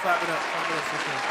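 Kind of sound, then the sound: crowd, applause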